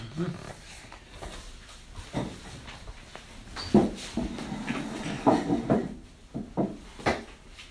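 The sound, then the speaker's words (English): During a medical examination, a patient walks up to the door and back across a hard floor at a steady, unhurried pace, with faint room noise and soft background voices. “Can I see you walk? Just walk up to the door and back there.”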